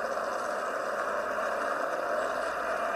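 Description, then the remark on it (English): A steady roar of several race car engines droning together at an even level as the cars, following Ross Chastain, get onto the track before the green flag, with no clear pass-bys or changes in pitch, and no voices. “Ross Chastain being the pulser, as I'm seeing those cars get onto the track.”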